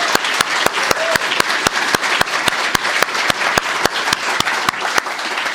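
A crowd at Lighthouse applauds steadily for several seconds after a speaker is introduced, a dense wash of clapping with sharp, evenly spaced individual claps cutting through in a quick regular rhythm. No voices are heard.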